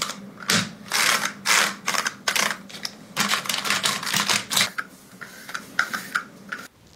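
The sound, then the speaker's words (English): Rapid clacky keystrokes from a mechanical keyboard, typed in quick uneven bursts, with a few sharper clicks and a brief pause near the end; no one speaks. “Do I actually like reacting to keyboard TikToks?”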